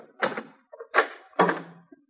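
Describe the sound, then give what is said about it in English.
The door of a rooming house being opened: three short, fairly loud rattling clunks spaced about half a second apart, with a brief low creak at the end of the last one and no voices. “While you open the door, you ain't got a thing to worry about.”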